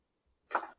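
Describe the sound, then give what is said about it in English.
A person does one brief, stifled imitation of a sneeze, a soft breathy burst, with silence on either side. “I sneeze. Yeah. Quietly, though.”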